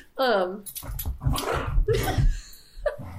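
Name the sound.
dogs whimpering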